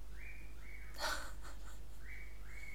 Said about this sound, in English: That's my bird, Clyde.